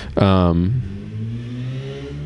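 A motorized vehicle goes by close, opening with a loud, whining tone that drops in pitch, then settling into a steady, moderately loud engine drone that carries on to the end.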